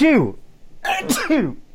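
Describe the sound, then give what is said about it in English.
A single sneeze: a short voiced rising 'ah' leads into a sharp, hissy burst, trailed by another brief voiced sound, fairly loud with no talking. “Bless you.”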